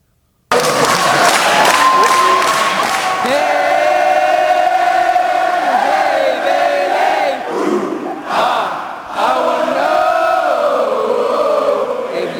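A large wrestling crowd loudly chants the "Hey, Bayley" version of a sung melody in unison for wrestler Bayley, with rhythmic clapping at the start; the roar stays loud throughout, dipping briefly before swelling again.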